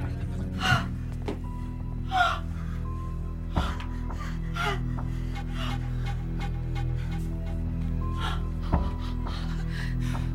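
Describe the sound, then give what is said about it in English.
Several sharp, breathy gasps come in quick bursts, fairly loud, with a few brief clicks between them over a steady low hum. No one speaks. “I gasped.”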